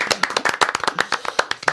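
Applause from a small group, a quick run of sharp, overlapping hand claps at an irregular but lively pace, lasting under two seconds with no voices over it.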